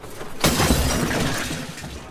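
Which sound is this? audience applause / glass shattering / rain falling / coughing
glass shattering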